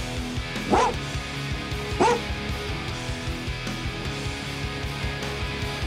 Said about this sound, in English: Those dogs are still barking since we had that earthquake. You can hear them in the studio. They're really still barking quite a bit.